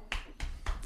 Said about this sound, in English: Let's get a little. You know what I mean? A little golf clap.